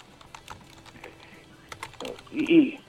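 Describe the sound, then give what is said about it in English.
Quick, irregular clicks of a child typing on a computer keyboard, soft, followed near the end by a brief louder voice over the background. “He's typing in some stuff on his computer.”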